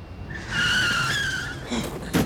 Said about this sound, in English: Oh, what was that? He ran right into the middle of the road. Oh, man, somebody got hit by a car.